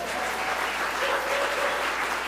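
An audience in a church service welcomes people with a round of applause: steady, dense clapping that holds at an even, fairly loud level throughout, with a faint sustained tone or voice murmuring underneath.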